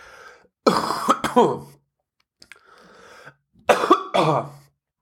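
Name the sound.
cough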